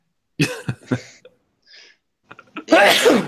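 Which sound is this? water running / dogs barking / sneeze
sneeze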